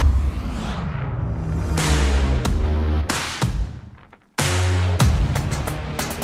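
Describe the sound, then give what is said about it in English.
A pre-production off-road truck with Multimatic GSSV shocks roars loudly as it accelerates past, revving through rising gears with a broad rushing noise, briefly dropping away near the end before surging back at full power. “We just inspired this pre-production truck you see behind me. Let's go see what it'll do.”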